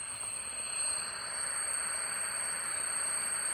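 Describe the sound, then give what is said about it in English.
A steady high-pitched electronic tone rings continuously over a broad, constant whooshing hiss, like simulated tinnitus, with faint brief clicks and no voices. “So yours doesn't have any of that sort of ambient noise to it. I don't have the whoosh.”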